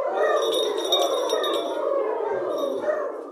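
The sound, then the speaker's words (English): A small wedding bell, belonging to two turtle doves, rings with rapid, bright, high tinkling strikes that fade and return, layered over a steady, wavering lower tone that runs throughout. “Two turtle doves and their wedding bell.”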